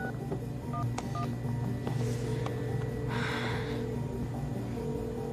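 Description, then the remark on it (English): Near the start, a few quick phone keypad tones beep in succession as someone dials 911 to report an accident. A sharp, noisy breath follows over a low, steady background hum. “No, listen, there's been an accident. I need to make a call.”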